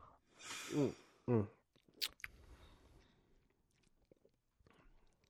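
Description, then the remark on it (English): Wet mouth sounds as someone sips and swishes Clown Shoes Mango Farm, an IPA beer with mango: two loud slurping sips early on, then quieter swishing and clicking of liquid moving around the mouth, with no talking. “take a sip of the beer with me and just swish it around your mouth a little bit.”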